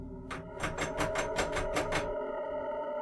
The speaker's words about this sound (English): You will find that the door is locked. Go ahead, give it a tug.